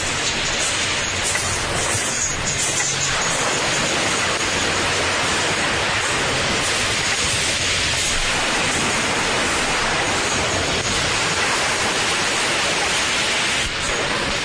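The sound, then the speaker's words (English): Ocean waves wash in a dense, continuous roar, loud and steady from start to finish with no distinct breaks between swells and no voices. “All the bit I'm skipping over is waves and a piano building up.”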